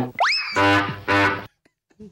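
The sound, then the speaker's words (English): A cartoon clown sound effect: a quick rising, whistle-like boing followed by two loud, buzzy honks of a bike horn, then silence apart from faint clicks. “The bike horn that you would play if we said Murph's name and you played the clown thing.”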